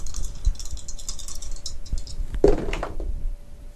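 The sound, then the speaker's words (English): A quick burst of hard plastic clicks and clatter as rose gold dice tumble across a table and settle on two fives, preceded by faint scattered tapping; fairly loud, with no talking. “Let's try this again. Using a different dice.”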